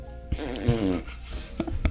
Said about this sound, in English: That's fart. A good one.